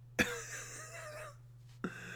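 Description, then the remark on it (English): A sharp cough bursts out, followed by a rough trailing rasp, then a second shorter cough near the end, all over a steady low electrical hum. A person coughs hard while laughing, hard enough to gag. “I just laughed and coughed so hard that I gagged.”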